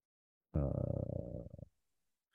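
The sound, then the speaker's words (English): One long, loud burp, a deep guttural rumble lasting about a second before trailing off into silence. No talking. “I'm about to burp on you.”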